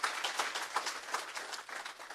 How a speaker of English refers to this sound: Give a round of applause for Journey Kids. That's for sure.